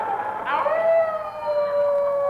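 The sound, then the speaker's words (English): A single long wolf howl rises briefly, then glides slowly downward in pitch and holds steady, sounding fairly loud with no talking over it. “Nice part for a wolf, ain't it?”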